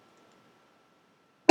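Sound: cough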